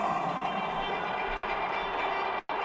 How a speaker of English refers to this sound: So I'll pause and let you hear the roar of Allegiant Stadium momentarily.